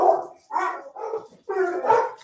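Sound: dogs barking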